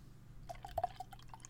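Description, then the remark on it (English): Porter beer glugs out of a bottle into a glass, a quiet run of short bubbly plops and trickles, with no talking. “Right, I'm pouring it.”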